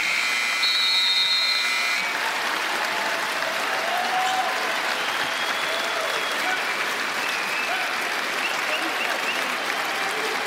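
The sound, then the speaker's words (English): An arena crowd at a Toronto basketball game applauds loudly and steadily as Fred VanVleet holds the ball and lets the shot clock run out to honor Kobe Bryant, a dense wash of clapping and cheering, with a sustained buzzer-like tone sounding over it in the first couple of seconds. “As Fred VanVleet holding on to it, and the crowd recognizing what this means.”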